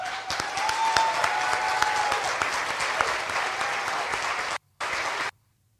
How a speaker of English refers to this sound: Yeah, and the people are clapping for him. The people there are clapping for him.